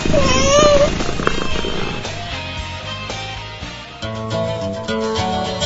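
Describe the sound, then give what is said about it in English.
A cat, Tiki, the mascot of radio station WTKI, gives a short, rising meow over a low, rumbling purr at the start, then the cat sounds fade as steady music swells in and carries on to the end. “The official healthcare provider for our mascot Tiki is Catisfaction Cat Clinic in Madison.”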